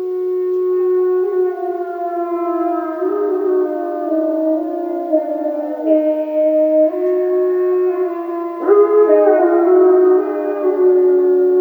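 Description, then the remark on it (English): Long, sustained timber wolf howls rising and falling in pitch, several voices overlapping in a loud, continuous chorus with no pauses and no one speaking. “he went more slowly, with caution in every movement, till he came to an open place among the trees and, looking out, saw, erect on haunches with nose pointed to the sky, a long, lean timber wolf.”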